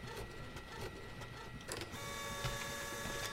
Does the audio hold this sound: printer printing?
yes